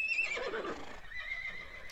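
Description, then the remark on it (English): A horse whinnies once, a bright, wavering neigh that rises and trails off over about two seconds, heard clearly with no talking. “The king gave Amunhotep horses.”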